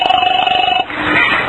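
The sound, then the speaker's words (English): A telephone line rings with a steady electronic tone through a narrow, phone-like channel as an operator connects a call to the 5th Precinct Police Station, lasting under a second before cutting to a different muffled line sound. “I'm ringing.”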